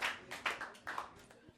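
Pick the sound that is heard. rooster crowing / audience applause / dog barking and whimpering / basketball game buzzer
audience applause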